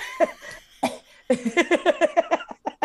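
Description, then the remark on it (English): A person coughs: a few separate harsh coughs, then a fast run of about ten short hacking coughs in a row, fairly loud and with no talking. “Who you coughing?”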